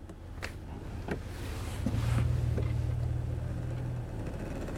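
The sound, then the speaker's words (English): A car engine idles in slow, crawling traffic short of a traffic signal, with a steady low rumble beneath a constant wash of road noise, broken by a few faint clicks and ticks, with no one speaking. “I still haven't made it to this traffic signal yet.”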